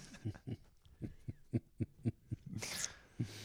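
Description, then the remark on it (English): A person imitates a dog with a quick, rhythmic string of about nine short barking yelps, fairly loud, then a brief breathy burst and one last yap. “It's great I'm barking. I'm just weird like that.”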